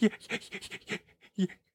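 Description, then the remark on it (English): A person pants rapidly like an excited dog, a quick run of short, breathy huffs trailing off into a few final gasps. “You're gonna like an excited dog just panting.”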